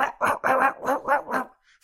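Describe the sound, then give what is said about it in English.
Angry dogs barking, a quick run of about five or six loud, harsh barks in steady rhythm, then a short quiet stretch. “Very, very angry dogs.”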